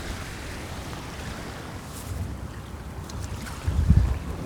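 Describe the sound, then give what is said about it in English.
Steady wind buffets the microphone outdoors, a constant low rumble with gusts swelling louder near the end, and no voices present. “So now, take my little microphones and let's see where we can place these to help bring you to this place and get more than just wind sounds.”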